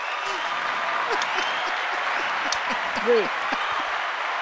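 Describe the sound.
Dense, steady applause from a crowd, a clapping sound effect played from a soundboard, fills the whole clip at an even level, with a few brief voice-like cries rising through the clapping.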